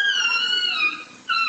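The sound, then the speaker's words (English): A small chihuahua lets out a long, high-pitched yelp of pain as its owner wrestles it away from an attacking animal on a residential street in Los Angeles; a sustained shrill cry that briefly fades and then rises again, loud with no talking. “The homeowner wrestles his dog away, but not before the little guy yelps in pain.”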